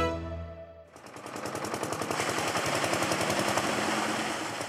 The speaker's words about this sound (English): Farmers in the village of Bahamas in northern Egypt are seeing the impact of water scarcity on their crops. Their pump sputters into action and water starts to bubble out.